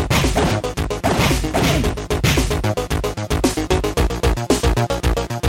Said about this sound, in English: All right, that's some real punching.